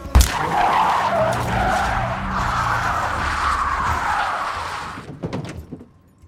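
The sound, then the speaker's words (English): A speeding car swerves around a dead deer lying on the road and the driver slams on the brakes: tires screech in a long, loud skid for about five seconds, the squeal holding steady before cutting off, followed by a few scattered knocks and rattles as the vehicle comes to rest. “Because he's going so fast out of nowhere, this deer dead on the road is like in front of the car, and he swerves out of the way, and then suddenly...”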